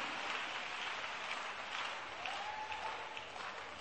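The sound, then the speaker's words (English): Steady applause from an audience, many hands clapping in a dense continuous wash throughout, with no talking over it. “If you don't clap for my latest CD, I will do something to you.”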